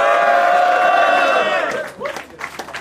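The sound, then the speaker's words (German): A rap battle crowd at the Ophelia Club cheers and yells for both MCs in a loud, sustained roar, with high-pitched whoops on top, then it breaks up into scattered shouts and claps that fade toward the end. “So, ey, Ophelia Club, mach doch mal Lärm für beide MCs!”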